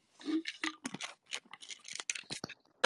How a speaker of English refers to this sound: 1 second. I'm just typing something. Go ahead. Finish typing.